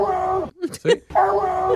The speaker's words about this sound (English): Anyway, This is a couple of months ago, a dog saying hello.